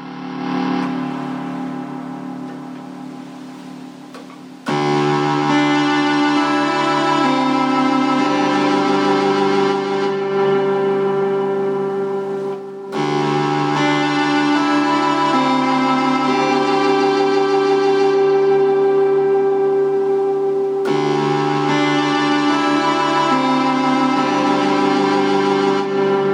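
Buzzy tones from an NES Poly Chiptune Synthesizer, a four-voice multi-track chiptune synth, play steady, sustained chords that switch abruptly every several seconds, bright and harmonically rich, at a loud, even level with no voices.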